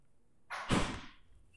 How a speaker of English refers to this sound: Close the door.